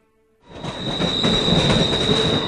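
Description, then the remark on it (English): After a moment of near silence, a steam train bursts in loud, its wheels squealing in a steady high whine over broad hissing rumble as it jolts to a stop, its cylinders issuing a final sigh of steam. “I awoke as the train jolted to a stop, its cylinders issuing a final sigh of steam.”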